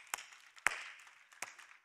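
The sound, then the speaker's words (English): Scattered applause from audience members who already have their Christmas lights up: three sharp, distinct claps stand out over a soft, hissing wash of crowd noise, all fairly quiet. “So, all right, proudly applaud with me because I'm with you.”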